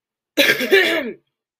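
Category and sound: human body sound, cough and throat clearing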